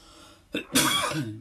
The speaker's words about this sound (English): Excuse the coughing.